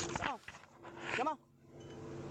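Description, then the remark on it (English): A goat inside a police car bleats twice in quick succession, fairly loud, each call a wavering, nasal cry over a steady low background hum. “Get the goat out of the car!”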